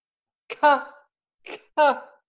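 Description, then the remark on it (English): A person lets out two harsh, throaty coughs about a second apart, each starting with a breathy burst and trailing into a voiced rasp, fairly loud with silence around them. “Cough.”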